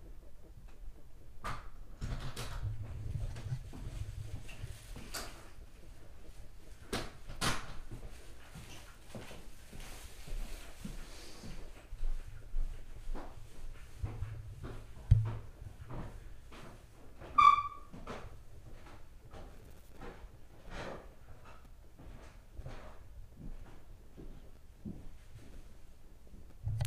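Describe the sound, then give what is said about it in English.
Someone comes in through a door at 3 o'clock in the morning: scattered muffled clunks, knocks and clicks, with one sharper metallic click partway through, over a low background rumble, fairly quiet. “But, 3 o'clock in the morning, and someone's just coming through the door.”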